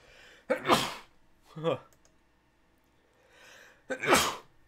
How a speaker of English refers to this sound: I'm gonna introduce a thing called the sneeze test. Can you hear me sneeze?